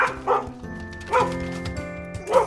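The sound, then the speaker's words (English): A dog barks four times in short, evenly spaced woofs, clear, with a faint steady hum in the background and no talking. “You are a good dog, even if you chew on my backpack.”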